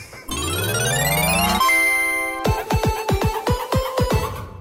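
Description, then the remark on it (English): A rising, whistling tone swells into a ringing bell, which is then struck rapidly about nine times in a row, each loud, close clang ringing over the last. No one speaks. “We hit the bell.”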